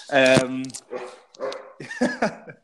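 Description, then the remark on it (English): A dog barks: one long, drawn-out bark followed by a few shorter, softer yaps in quick succession. “sorry, I'm just going to get my dog over here.”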